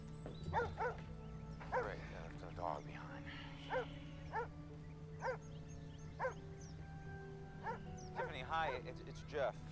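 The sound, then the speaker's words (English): A dog left behind at a vacated house barks repeatedly in short, evenly spaced bursts, about ten in all, over a steady low hum; the barks are fairly loud. “I think they left their dog behind.”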